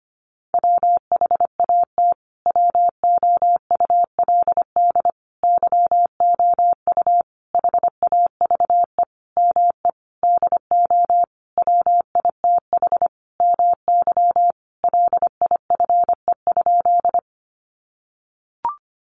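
Rapid Morse code at 25 words per minute, sending practice sentences built from the top 300 words as a single steady mid-pitched tone, keyed in quick dots and dashes with short pauses between groups for about seventeen seconds, then a faint click near the end.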